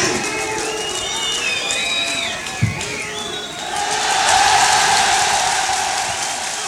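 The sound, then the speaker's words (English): A live audience on a recorded performance roars with sustained cheering and scattered shouts as the performers storm off stage at the end, a dense wash of voices that swells louder toward the end, with whistles and yells cutting through. “And they storm off stage and all cheer at the end.”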